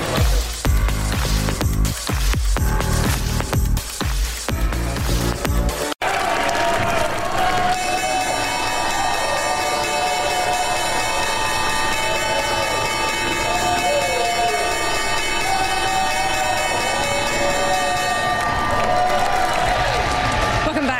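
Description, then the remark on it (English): The New York Stock Exchange opening bell rings steadily for about ten seconds at the market open over a loud, cheering and clapping crowd, after a few seconds of heavy, rhythmic pounding at the start. “That was the opening bell here live from the New York Stock Exchange.”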